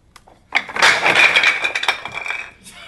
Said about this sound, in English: For those listening to the audio podcast, the Jenga tower just fell over.